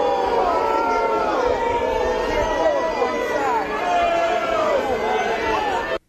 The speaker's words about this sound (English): So, booing. How about that? And right next to Ed Markey, Elizabeth Warren was having a hard time grasping that there was booing.